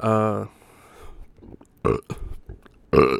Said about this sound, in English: I need a burp.